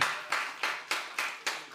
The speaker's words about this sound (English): But give the Lord a hand clap of praise for that. Amen.